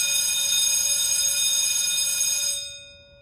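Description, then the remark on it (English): A loud electric school bell mounted in the room rings continuously for a couple of seconds, a harsh metallic clatter that cuts off abruptly and leaves a brief fading ring. “I'm getting really tired of that bell.”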